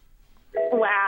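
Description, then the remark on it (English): A loud electronic warning chime in a car running low on petrol begins abruptly after a brief quiet moment, a bright harmonic tone that steps up in pitch and holds steady, like a dashboard alert. “Has someone not got their seatbelt on? Yeah. Or are you running out of petrol?”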